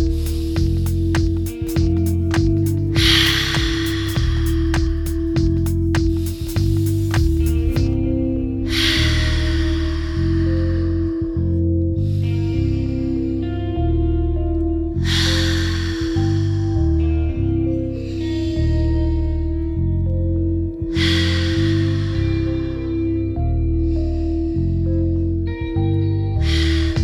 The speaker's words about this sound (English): I need you to inhale deeply and slowly through the nose and exhale through the mouth for five deep breaths. Let's go. Breathe in.